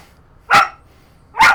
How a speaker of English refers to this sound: you can't bark right now.